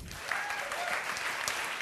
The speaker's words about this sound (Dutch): Dames en heren, mag ik alsjeblieft een warm applaus